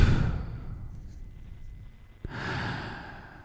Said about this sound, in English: I'll cut the music and just take a nice deep breath. Yes. Through the nose, out the mouth.